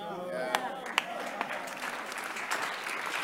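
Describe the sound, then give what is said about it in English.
An audience breaks into steady applause for Jesus, many hands clapping together in a dense, continuous patter with a few sharper individual claps standing out early on. “It's a good place for you to clap for Jesus.”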